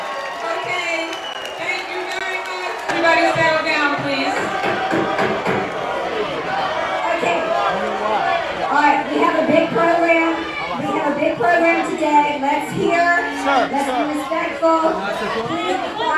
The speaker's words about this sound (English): Best part I love is that she was actually booed off stage at a DNC event in 2016. Here, take a listen.